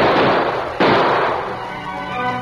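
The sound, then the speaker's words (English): Gunshots ring out near a town sheriff's office: a loud blast, then a second sharp crack a moment later, each followed by a long, noisy ringing decay that fades out. The shots fly over the head of a man racing away on the lawman's horse. No voices are heard. “Dan Reed and a number of townsmen were near the sheriff's office when Dave raced away on the lawman's horse with bullets flying over his head.”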